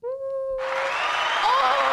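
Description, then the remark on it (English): A brief steady tone gives way to a sudden burst of crowd cheering and clapping, a loud, dense roar with whooping voices that holds strong to the end. “Oh, yay, the crowd goes wild.”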